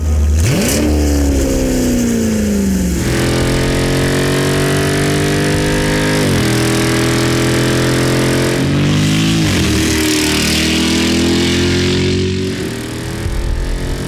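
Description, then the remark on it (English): A car engine revs hard through a loud Borla T304 stainless steel performance exhaust, climbing through several gear pulls with rising pitch and brief drops between shifts, continuous with no talking. “This will be a vehicle with a Borla exhaust, a T304 stainless Borla exhaust.”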